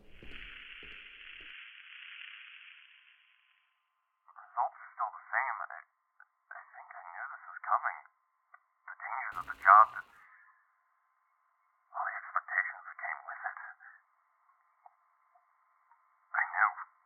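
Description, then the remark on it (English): A radio transmission: a few seconds of steady static hiss, then short bursts of thin, band-limited, garbled voice crackling through with pauses between them, fairly faint. “It sounds like a radio.”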